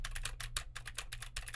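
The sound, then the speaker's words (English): Rapid, frantic typing on a mechanical keyboard with clicky Gateron Blue switches, a dense stream of sharp clacks over a low steady hum, with no voices; the typing tests how much a Rode NT1 microphone rejects the noise. “Now typing like a maniac on a keyboard with Gateron Blue switches to see how much the current Rode NT1 rejects of that.”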